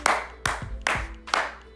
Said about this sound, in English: Clap it up for y'all real quick.